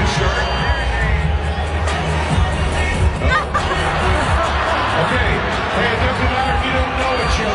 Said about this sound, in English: Okay, so maybe you heard the PA guy in there. He says, doesn't matter if you don't know each other. First couple comes up, they kiss, some light applause, and then another couple comes up on the scoreboard screen.